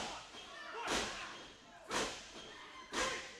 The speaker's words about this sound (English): Oh, stomps in the corner.